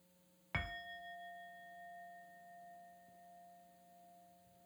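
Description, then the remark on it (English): A single meditation bell is struck once during a guided meditation, its bright metallic tone ringing out and slowly fading over several seconds, with no talking. “So now I am going to invite the sound of the bell and begin belly breathing.”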